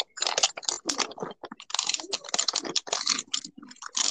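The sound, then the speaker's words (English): Crunching of Oreo Crunchy Bites cookies being chewed: a rapid, steady stream of crisp, brittle crunches with brief pauses, loud, no talking. “Oh, I got Oreo Crunchy Bites. I'm gonna crunch.”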